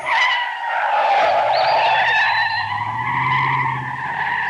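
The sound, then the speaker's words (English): Tires squeal loudly and continuously as a car driven like a madman skids out in the middle of nowhere, a high screeching whine with a wavering pitch over a low engine rumble, lasting several seconds without pause. “Who is driving like a madman out here in the middle of nowhere?”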